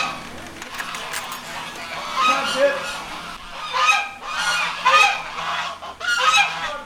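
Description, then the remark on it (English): A duck named Pit at Farm Sanctuary honks excitedly around people in a string of loud, raspy bursts, several calls coming in quick succession, with scattered background noise between them. “There's one duck in the sanctuary who loves people.”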